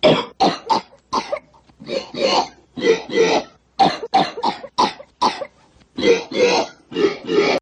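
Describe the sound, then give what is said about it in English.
A rapid, rhythmic run of coughs and retching belches sampled on keyboards, pitched up and down to play a lilting Strauss melody, as in a scene of Ferris Bueller's Day Off; each burst short and punchy and loud, with no talking. “where Ferris is pretending to be sick, and he loads lots of coughing and barfing sounds onto his keyboards, and he starts playing Strauss in barfs and coughs.”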